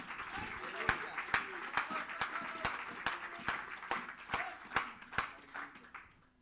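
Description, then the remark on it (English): A church audience claps in steady unison to thank the Lord, sharp regular claps roughly twice a second for several seconds, with crowd voices murmuring underneath before the clapping fades out. “If you're going to have good church, why don't you clap your hands one more time and thank him.”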